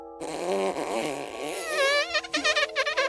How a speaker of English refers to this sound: What if someone was doing ASMR and they just farted into the mic? Like it was that tiny tear.